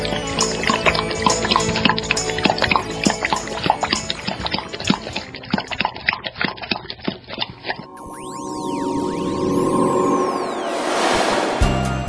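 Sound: running water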